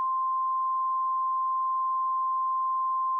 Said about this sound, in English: Too bad your Instagram name was just bleeped there. Every time you say it, it just gets bleeped.